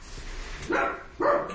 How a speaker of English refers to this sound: Remember I told you in the beginning I said my dogs are going to interrupt the show?